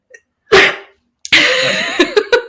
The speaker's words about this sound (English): I might sneeze.